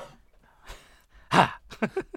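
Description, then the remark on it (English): One quick, sharp cough bursts out loud and harsh, followed by a few softer, breathy throat sounds trailing off in short pulses. “It's my quick cough.”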